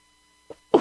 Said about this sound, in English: Uh-oh, I'm having a little sneezing fit here.